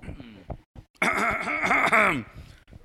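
A loud, drawn-out throat clearing, rough and voiced with a wobbling pitch, lasting about a second after a few soft vocal noises, then trailing off.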